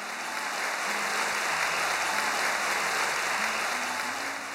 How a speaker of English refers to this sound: Oh, sorry. Was the applause at the wrong moment? My bad.